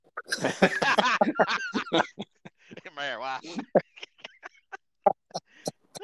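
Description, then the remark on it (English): Chickens, one laying eggs, cluck and squawk, a busy burst of overlapping calls at first, then a drawn-out squawk and scattered short clucks trailing off. “God damn chicken laying eggs there. Got chickens everywhere.”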